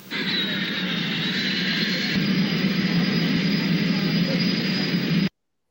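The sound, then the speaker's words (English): The engine of a small propeller airplane, one that might hold about a dozen people, drones steadily and loudly, a constant roaring hum with a thin high whine riding on top, before cutting off abruptly. “This is the airplane we're talking about.”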